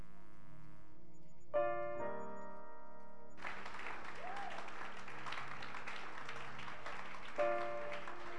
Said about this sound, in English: Keep clapping your hands. And tonight, as we clap our hands, I want us to appreciate our sound engineer.